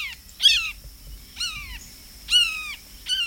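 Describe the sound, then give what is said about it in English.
A blue jay gives loud, descending hawk-like screams imitating a red-shouldered hawk, four harsh calls spaced about a second apart, with no talking. “And astute mimicry of birds of prey, such as the red-shouldered hawk.”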